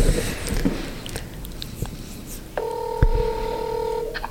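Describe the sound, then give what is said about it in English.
Telephone dialing and ringing sounds over a phone line: a few faint clicks and noisy rustles, then one steady, fairly loud ringing tone holding for over a second before cutting off. “And we're ringing.”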